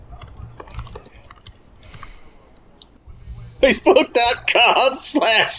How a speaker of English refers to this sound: Well, I mean, if I'm typing it in, because I'm right now I'm trying to type it in.